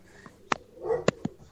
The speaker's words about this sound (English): Dogs are barking.